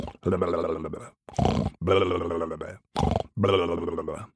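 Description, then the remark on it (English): A voice imitates the devil snoring asleep with five rough, throaty snorts in an uneven rhythm, each a loud rasping burst separated by short silences. “And very quickly again, the devil was snoring asleep.”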